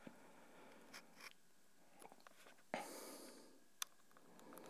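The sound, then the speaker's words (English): A cable clicking in its socket: a few sharp, irregular clicks, with a brief scraping rustle partway through, against a quiet background with no voices. “Yeah, it's definitely the cable clicking in the socket.”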